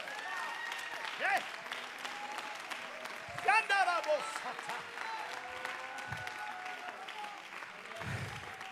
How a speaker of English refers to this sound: Come on, we're about to explode in this place. Clap your hands to him.